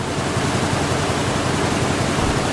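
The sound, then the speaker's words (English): A loud sports headlines intro sound effect blasts out as a dense, steady rush of hiss-like noise, filling the full few seconds at constant volume with no voices over it. “Wow, that's a very loud sports headlines intro.”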